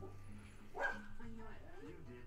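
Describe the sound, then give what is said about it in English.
Dogs yip and bark in short, sharp bursts, one louder yelp standing out, while people talk over them. “Some yippy action happening out there.”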